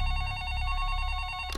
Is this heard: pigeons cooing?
no